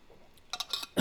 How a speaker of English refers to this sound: sip of water.